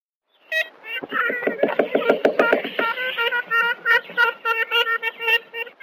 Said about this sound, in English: Now, it was, 1935 that another team from Cornell made the only recording we have of a live ivory-billed woodpecker. So why don't we take a listen to that so we can hear what we're looking for?